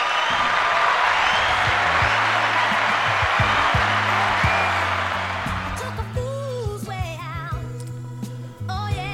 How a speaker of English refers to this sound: So, well, let's all just give a little round of applause